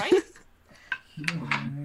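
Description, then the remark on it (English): Dice are moved out of a wormwood ball into another container, clattering in a few sharp, hard clicks and rattles, partly overlapped by people talking and a low hum of voices. “I need to like move my dice into something else.”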